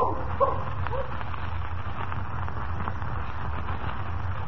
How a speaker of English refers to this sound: Go find Jimmy. Find this horn. That's a good dog.